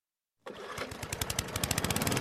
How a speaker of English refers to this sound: Ah, the sound of the sea. There's only one place you'll hear lawnmowers this far from land, because there's only one cruise line with ships that have up to half an acre of real, finely manicured lawns.